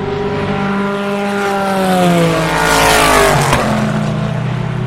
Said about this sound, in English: That's an LMP2, probably the Nissan engine. Another LMP2, here's a couple.